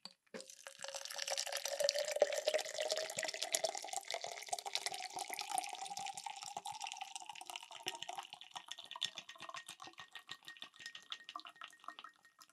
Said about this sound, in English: Okay. Here we go. Let me just get my accessory ready. And pour.